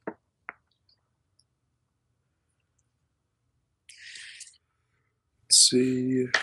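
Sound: dice being rolled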